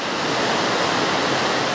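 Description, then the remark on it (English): A steady, loud roar of a powerful waterfall crashing beside wild jungle, pouring on without a break, dense and hissing with no other sounds or voices. “With wild jungle on one side and a roaring waterfall on the other, the sound of crashing water drowned out the sound of the teleport.”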